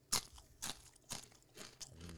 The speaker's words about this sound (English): I'm eating a type of cracker. I want you to listen to me eat it and see if you can guess what type of cracker this is.